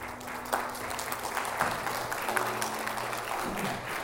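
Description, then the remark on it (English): An audience applauds steadily for a few seconds for Josh after a prayer, a dense wash of many hands clapping at a moderate volume, with a low sustained tone humming underneath. “Let me clap it up for Josh.”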